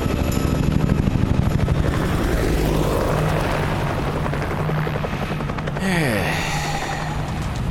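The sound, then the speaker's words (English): A helicopter roars overhead, its rotor thumping in a rapid, steady chop over a loud engine whine, then the pitch sweeps downward as it passes. “I'd like to know why these helicopters keep showing up and why I can't fly out on one of them.”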